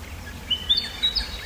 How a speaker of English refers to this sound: There goes a black-faced cuckoo shrike over my head, which ironically is neither a cuckoo nor a shrike.